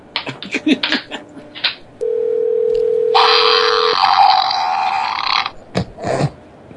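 A long, wet, sputtering fart sound effect plays loud, overlapping a steady electronic tone. Short noisy bursts come before and after it.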